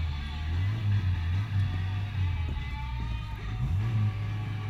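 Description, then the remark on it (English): A car engine, now sounding like a moped's, drones steadily at a low pitch, its tone wavering slightly as it revs up and down, fairly loud with no talking. “Listen to how the car changes. Now it sounds like a moped.”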